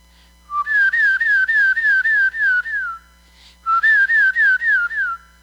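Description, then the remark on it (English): A woman at a women's conference whistles two loud phrases of quick warbling notes, each a rapid string of rising, wavering tones, separated by a brief pause. No one speaks. “So when I'm at this women's conference, what begins to happen is she begins to whistle.”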